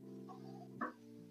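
A single short dog bark breaks out partway through, set against a steady low electrical hum that runs the whole time. No one speaks.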